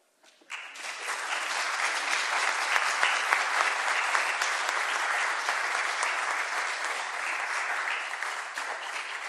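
A crowd breaks into sustained applause, many hands clapping in a dense, steady wash of sound that begins abruptly and holds at an even level for several seconds.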